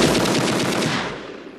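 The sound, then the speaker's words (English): A loud, rapid burst of machine gun fire, shots rattling in a fast, even stream for over a second before tapering off slightly at the end. No voices. “Right, that was better than my machine gun imitation that I tried the other day, right?”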